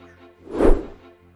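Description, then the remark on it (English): A single whoosh transition effect swells up and falls away in about half a second, a broad airy rush over a low, steady tonal hum, with no voices. “All right, whoosh me in, Gabe.”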